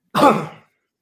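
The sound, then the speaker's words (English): A single short, raspy cough or throat clear, fairly loud, a harsh burst of about half a second that fades quickly into silence, with no talking around it. “Is that a sneeze or a cough?”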